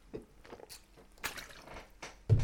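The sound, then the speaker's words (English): Sips and gulps of water, a few wet swallowing sounds spread over a couple of seconds, ending with a louder thump like a cup being set down. “I'm drinking some water here.”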